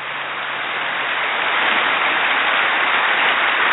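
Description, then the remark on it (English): Dense, continuous applause from a crowd, a steady wash of many hands clapping that swells slightly and holds at full strength, with no voices over it. “Yeah, there's 20 more seconds of applause, so just enjoy it.”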